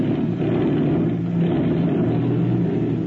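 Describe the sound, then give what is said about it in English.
A small airplane engine drones steadily at idle on a hidden ranch in the hills south of Juarez, Mexico, as the plane is about to take off for the Texas border, a loud, continuous low rumble with a throbbing hum that holds constant throughout, no voices heard. “The airplane has been pushed out. Is about to take off from the ranch.”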